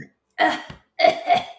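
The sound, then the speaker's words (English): Two rough, throaty coughing bursts about half a second apart from a person coughing in between burping, fairly loud, with a deep guttural edge, and no talking around them. “Like, I was coughing in between burping.”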